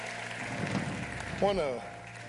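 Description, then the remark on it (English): A church audience claps together for its young people in a steady, dense patter of applause, with a voice rising briefly over the clapping partway through. “Let's give our young people a hand clap.”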